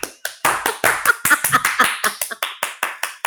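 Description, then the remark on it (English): A quick, steady run of hand claps, around a dozen or more sharp slaps in a few seconds, fairly loud with no talking over them. “Clap if you care.”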